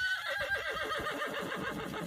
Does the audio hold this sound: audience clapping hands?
no